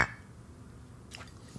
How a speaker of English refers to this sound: Yeah, let's do it. As we always say on American Brews and Tunes. Clink. Down the mushroom hatch.